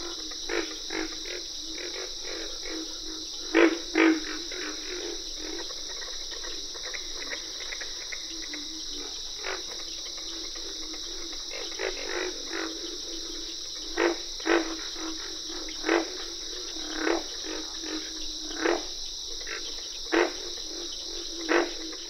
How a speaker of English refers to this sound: We leave you this week deep in a southern swamp. Pig frogs make the loudest grunts in this pond in the Okefenokee National Wildlife Refuge in Georgia.